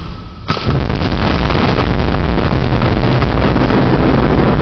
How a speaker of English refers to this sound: Lightning strikes just a few meters away from the cop as he gets out of his cruiser. The strike knocked out power to the nearby police station and damaged many electrical transformers in the area.